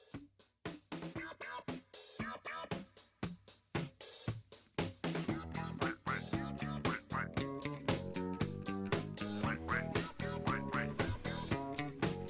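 An upbeat disco song plays loud as a wrestler's entrance music, opening with sharp, punchy hits before settling into a steady driving beat, with a duck-like quacking voice bobbing over the music.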